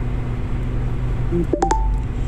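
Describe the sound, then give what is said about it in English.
A quick electronic notification chirp: a couple of short tonal beeps with sharp clicks, ending on a brief higher tone, heard over a steady low background hum with no talking. “As you hear a chime or chirp, that's the notifications.”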